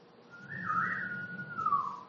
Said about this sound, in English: I remember this one day, the three are walking across the playground, and I hear this whistle.